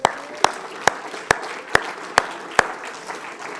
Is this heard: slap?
no